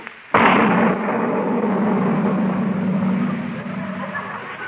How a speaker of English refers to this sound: what in the world did you put in that cannon? It was just sort of a giant firecracker